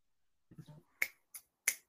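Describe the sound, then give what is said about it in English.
A brief murmur of voice, then three sharp finger snaps in quick succession, crisp, like listeners snapping in appreciation. “It, don't clap. Don't snap it.”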